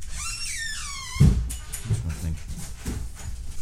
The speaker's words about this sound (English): The door interrupted your train of thought.